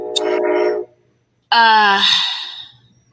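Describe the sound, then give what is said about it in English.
A brief stretch of voice, then a pause, followed by a loud, sustained blast of the horn of a train passing by outside, rich and blaring, lasting over a second before fading. “sorry, my train's going by.”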